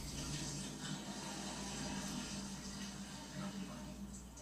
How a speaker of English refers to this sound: She's taking a shower.